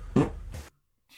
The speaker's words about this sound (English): I'm gonna fart.